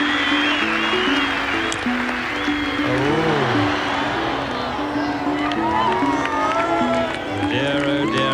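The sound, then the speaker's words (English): A large golf gallery applauds and cheers continuously at steady high volume for Seve walking up the 18th fairway, with shouts and whoops rising above a dense wash of clapping and voices for the full stretch. “I think he's just waiting for the applause for Seve walking up the 18th fairway to cease so that he can concentrate on this very, very tough shot.”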